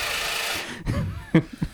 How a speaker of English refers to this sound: I've got this automatic card shuffler. It shuffles cards automatically, taking someone else's job.